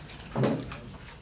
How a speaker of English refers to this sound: I'm going to shut the door. I'm so sorry.